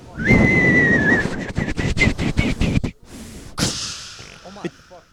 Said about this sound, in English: Whistling club.